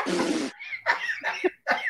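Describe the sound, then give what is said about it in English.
A single loud, explosive sneeze bursts out, followed by a few short, breathy vocal sounds rising and falling in pitch. “God bless you.”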